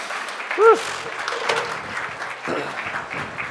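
A crowd claps steadily in a dense, sustained patter as members of a leadership team come up, with a brief high whoop of cheering rising above the applause early on.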